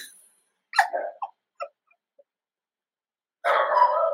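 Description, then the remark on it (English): A dog named King barks in protect mode as a neighbor comes home and closes her door, a few sharp, loud bursts, a cluster of quick barks followed by a pause and then a longer, harsher bark, with no talking. “I should have closed the door. Goodness, I'm so sorry. I forgot to close the door. So yeah, he's in protect mode”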